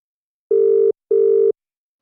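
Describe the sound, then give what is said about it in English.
A ringback tone on an outgoing phone call to Malcolm Turnbull's phone number: two short, steady electronic buzzes in quick succession, then silence. It is clear and moderately loud, with no voices. “Malcolm, it's ringing.”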